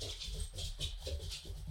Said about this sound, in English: Those are our dogs in the background.